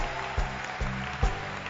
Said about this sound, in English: Clap your hands and celebrate God. Yes. Thank you, Lord.